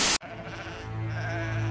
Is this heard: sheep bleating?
yes